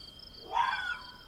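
A single harsh, rasping screech rises out of a faint background hiss, holding for about half a second with a strained, slightly tonal edge before fading away.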